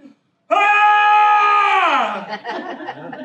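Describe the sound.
A voice mimics an archangel's scream: one loud, sustained high-pitched wail that holds steady, then slides down and breaks into breathy chuckles.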